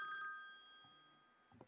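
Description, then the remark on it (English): A single old-fashioned telephone bell rings briefly, its metallic tone lingering and fading out, followed by a faint soft knock near the end; no one speaks. “Quiet, kids. Quiet. Dad's on the phone.”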